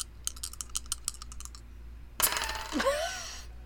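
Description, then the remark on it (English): A quick series of light clicks as percentile dice rattle together, then a sharp clatter as they hit a table and tumble to a stop, fairly loud, with no talking. “You want to roll high on this one.”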